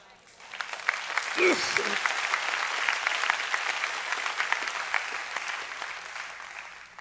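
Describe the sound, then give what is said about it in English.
Steady applause from an audience, a dense, crackling wash of many hands clapping that starts abruptly and holds at an even level for several seconds, with a brief voice rising over it early on. “Well, if you would know the rest of the story, you wouldn't clap now”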